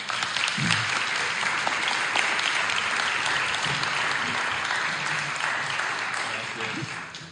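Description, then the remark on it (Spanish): Loud, sustained applause from a crowd welcoming a pastor, a dense steady wash of clapping that holds for about seven seconds before tapering slightly at the end, with faint voices mixed underneath. “y yo quiero que lo recibamos con un fuerte aplauso.”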